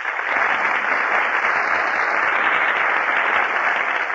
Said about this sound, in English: That applause you hear, ladies and gentlemen, is for Alice Kay, Herbert Marshall, and Humphrey Bogart, who are just entering our Gulf Theater stage.